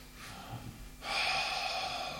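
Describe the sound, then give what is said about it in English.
A voice imitates deep, heavy mechanical Star Wars-style breathing: a soft, raspy intake followed by a loud, hissing breath, with no talking. “Deep breathing.”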